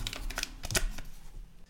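A folded paper note being opened, giving a short run of crisp, papery crackles and rustles in quick irregular bursts, fairly quiet and with no voices over it.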